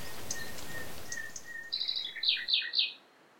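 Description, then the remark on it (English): A nightingale in the trees and shrubs by a river sings a short, rich phrase of whistles and rapid chirping trills, clear, over a soft background hiss of other birds. “The nightingales in the trees and shrubs by the river.”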